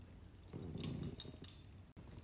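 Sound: drink glasses clinking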